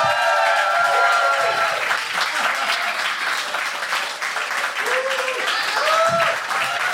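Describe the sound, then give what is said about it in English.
A crowd gives another round of applause for comedian Athena Kugblenu, dense clapping holding at full strength throughout, with a few voices cheering and whooping over it. “Another round of applause for Athena Kugblenu!”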